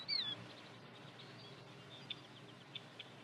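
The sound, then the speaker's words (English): A killdeer gives one shrill, piercing call at the outset, followed by a few faint, brief peeps spaced apart against a quiet outdoor background hiss. “Killdeer feed primarily on insects and beetles, many of which are pests like weevils and wireworms.”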